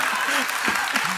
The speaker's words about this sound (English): why are you clapping?